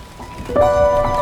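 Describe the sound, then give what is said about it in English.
Horse hooves clip-clop at a steady pace as a black and tan horse pulls a rickety old refitted carnival carriage, with a sustained tonal sound rising over the hoofbeats partway through. “A rickety old refitted carnival carriage is pulled by a familiar looking black and tan horse.”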